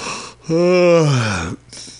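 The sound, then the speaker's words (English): A single drawn-out, voiced yawn lasting about a second, fairly loud, its pitch sliding downward before trailing off, with soft breathy noise before and after. “And I'm yawning a lot.”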